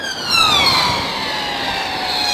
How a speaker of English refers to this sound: On top of that, I'll let this police car go by.